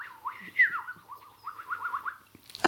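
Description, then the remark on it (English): A person imitates a bird call by whistling, a run of quick rising and falling warbling notes repeated in a lively rhythm, clear, ending with a short sharp click. “And I won't be the first person to have noted when you was impersonating that bird, you were very good. Do it again.”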